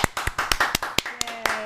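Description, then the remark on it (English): A brisk round of hand clapping, sharp claps arriving in a quick, steady rhythm, fairly loud, with faint voices murmuring underneath. “Everyone clap.”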